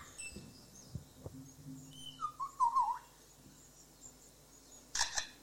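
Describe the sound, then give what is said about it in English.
A bird that can imitate the calls of at least 20 different species mimics a camera with a motor drive: a short whistled warble, then a sharp burst of rapid mechanical clicks, with no talking. “A camera with a motor drive.”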